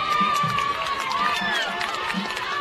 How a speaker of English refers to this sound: Now you can hear the Siegel fans screaming across the way.